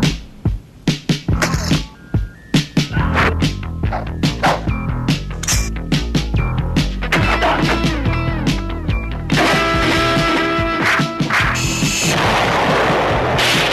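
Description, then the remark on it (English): A martial arts movie trailer soundtrack: a rapid string of sharp whacks and booming impacts opens, then loud, dense dramatic music with crashing hits builds and carries through to the end. “We leave you now with the trailer for Firecracker.”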